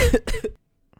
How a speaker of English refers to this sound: I was just like, coughing out one of my lungs. But it looked like your soul was going to escape that time. Yeah, I caught it. It almost did.